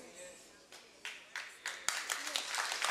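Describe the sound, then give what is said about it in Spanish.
Thin, scattered applause from an audience: a few separate claps at first, gradually thickening into light, uneven clapping that stays fairly soft throughout. “Ahí el aplauso no estuvo muy fuerte.”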